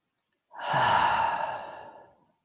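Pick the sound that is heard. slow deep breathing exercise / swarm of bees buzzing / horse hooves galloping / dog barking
slow deep breathing exercise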